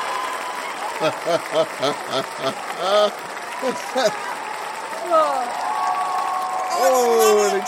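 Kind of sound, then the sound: crowd, applause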